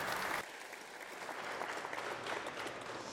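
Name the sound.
audience applauding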